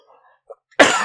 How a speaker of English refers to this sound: Coughing.